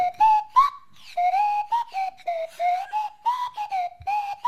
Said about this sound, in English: Grace on the swanny whistle